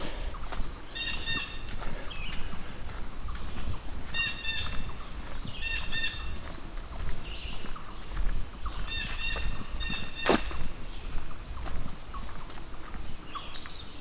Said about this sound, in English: You know, blue jay.